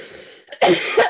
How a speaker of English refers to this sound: Excuse me, I'm trying to hold back a cough and it is not working.